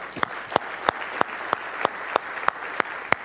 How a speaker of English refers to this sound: Thank you. Round of applause.